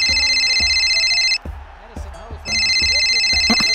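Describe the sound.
A mobile phone ringtone plays in loud electronic bursts, pausing briefly and then resuming, with muffled background sounds and some voices underneath.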